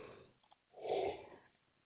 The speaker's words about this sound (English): excuse me, I have to yawn a second, folks.